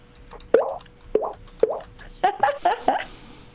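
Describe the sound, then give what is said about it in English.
A jaw harp mimics a dripping faucet with twangy, pitch-bending plops: three evenly spaced drips, then a quicker run of four, clear with no talking. “So I can make it sound like there's a water dripping, a faucet dripping.”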